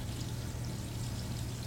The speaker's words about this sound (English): Sorry, that's the water behind me. Are you pissing into a bottle in the background? Yes. God. I'm in an unfinished basement, so you can hear some sounds.